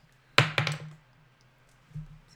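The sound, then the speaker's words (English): A die is rerolled in a tabletop game after landing cocked, clattering onto a hard surface: a loud initial hit followed by two or three quicker rattling taps, then quiet and one softer knock about a second later. No one speaks. “Roll it again. It's cocked.”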